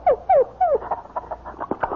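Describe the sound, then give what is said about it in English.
A dog whimpers in three drawn-out, falling whines, then breaks into a quick run of short yips and small barks, moderately loud, with no one talking. “Say, you've got a dog and a beauty.”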